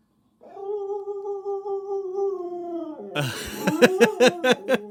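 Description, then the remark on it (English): A dog named Ziggy, being offered Bocce's Bakery peanut butter banana chip dog treats, lets out a long, wavering whine that breaks into a rapid burst of sharp, excited yips and barks, fairly loud, with no talking. “Hey, Ziggy, come here, buddy. Here, puppy. What do you think of these treats?”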